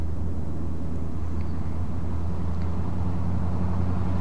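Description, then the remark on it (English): A car engine rumbles low and steady for several seconds, a continuous droning hum with no one speaking, as a car pulls up a long driveway. “I think you're pulling up now.”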